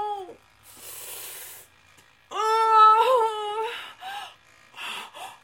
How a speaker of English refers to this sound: The kitty's meowing.